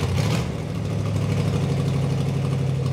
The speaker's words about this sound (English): any given Friday night, amid the glow of stoplights, fast food franchises, and international grocery stores, you can see cars and trucks modified with neon lights, spinning rims, and streamlined spoilers strutting from north to south and back again.